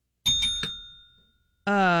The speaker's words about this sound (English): It's kind of funny how you have to hit the bell twice. That's just sort of like... It's just automatic. I can't help myself.